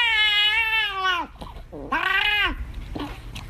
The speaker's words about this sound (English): Here's a cat that turns into a demon when its treat is taken away.